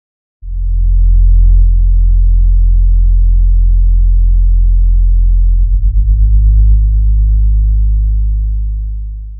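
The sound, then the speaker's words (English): A deep, pure synthetic sine-wave bass tone from a sine wave oscillator, added as a bass layer in a modern-sounding film score, holds steadily and loudly for about nine seconds, with a brief wobble early on and a fluttering pitch shift around two-thirds through, tapering off at the end. “That type of bass is a straight-up synthetic sound. It's an oscillator, a sine wave oscillator, very pure and neutral tone.”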